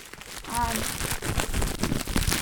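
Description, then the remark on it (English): Steady crinkling and crackling of plastic packaging being torn open, with dense rustling bursts throughout and a brief vocal sound early on. “Packaging ASMR.”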